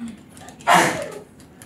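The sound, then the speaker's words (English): A single sudden sneeze bursts out, sharp and breathy, then trails off over about half a second, with quiet murmuring around it. “Bless you.”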